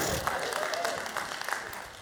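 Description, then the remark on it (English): A church audience applauds steadily while the preacher blows his nose, a dense patter of many hands clapping together at moderate volume throughout, with a faint murmur of voices mixed in. “Y'all clap or something while I blow my nose so you won't hear it.”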